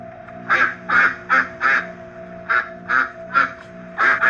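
A duck quacks over and over in clear, nasal bursts, about nine quacks in two quick runs separated by a short pause, with a faint steady hum underneath and no talking.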